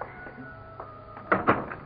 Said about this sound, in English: Let me get the door.